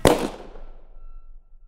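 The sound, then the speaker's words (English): A single loud gunshot cracks sharply at the very start, fired at about 7:44 p.m. in a police department briefing room where a suspect was being booked, its echo decaying over about a second, with a faint low hum lingering afterward and no voices. “Then, less than a half hour later, as Officer East is typing the suspect's information into the database, Officer Snelson hears a single gunshot ring out at approximately 7:44 p.m.”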